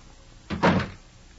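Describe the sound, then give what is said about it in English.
A door swings shut with one solid thud, a brief scrape or latch click leading into the heavier impact, then quiet; Van Helsing closing the door. “After closing the door, Van Helsing opened the note and read.”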